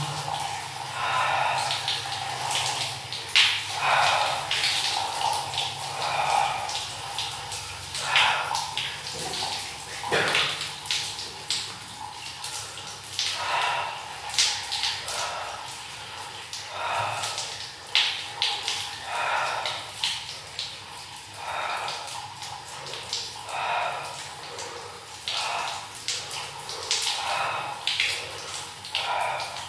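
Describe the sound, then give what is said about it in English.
Cold water sloshes and splashes around a person standing in it for the whole stretch, with scattered drips and small surges of movement breaking through the steady wash. “I'm gonna stand in the cold water one more time.”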